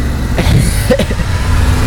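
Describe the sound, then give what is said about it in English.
A Honda car engine roars loudly, a continuous deep rumble with a brief surge partway through, running steadily for the whole two seconds with no voices. “That Honda's exploding.”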